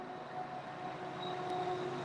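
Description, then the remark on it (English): A train rolls past in the morning, its continuous rumble carrying a faint metallic whine that holds level for the whole moment, with no voices present. “That train's a little late this morning.”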